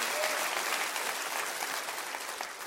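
crowd, audience clapping hands

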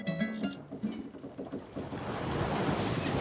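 nature, ocean waves

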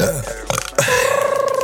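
human body sound, burp

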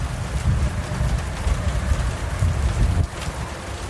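nature, rainstorm

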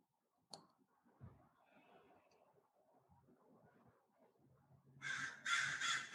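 bird, birds cawing

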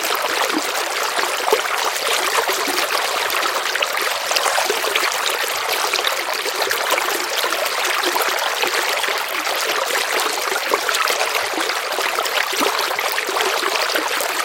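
nature, flowing river water

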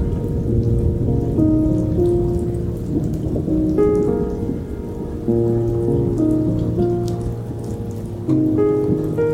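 nature, heavy rain downpour

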